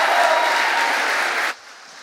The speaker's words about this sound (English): Come on, put your hands together and give God a hand clap of praise.